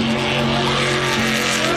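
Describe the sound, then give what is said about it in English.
The engine of the number 69 race car roars steadily while tires squeal and skid, a continuous loud burst of motorsport noise with no voices. “you of course, hopped in the number 69 car.”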